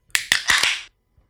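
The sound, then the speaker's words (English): A can of Simply Simcoe, a double IPA by Red Hair Brewing, being cracked open: a few sharp metallic clicks followed by a bright, brief fizzing hiss that stops abruptly, with no voices. “So let's go ahead and crack this thing real quick.”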